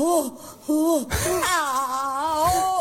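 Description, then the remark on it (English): A woman screams in anger over the death of Ruth Bader Ginsburg, in loud, high-pitched cries: two short rising-and-falling shrieks, then a longer, wavering wail that trembles in pitch. No one speaks. “Oh, yeah, that was the Ruth Bader Ginsburg screamer.”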